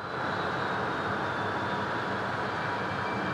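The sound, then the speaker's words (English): A steady, dense urban hum from a place by a rail yard with rail traffic still going, an arterial street with people going to work, and a police station; a continuous low rumble with a faint high whine running through it, unchanging and without pauses or voices. “We still have this noise, there's still this hum, so there's not so much of a hush.”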